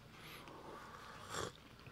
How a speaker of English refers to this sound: Sipping coffee.